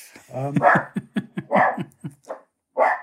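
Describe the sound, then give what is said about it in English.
Two dogs bark in quick, irregular bursts, loud, with short yips between the barks and a final bark after a brief pause. “As you may have gathered, I've got two dogs, which is something that we will get on to later.”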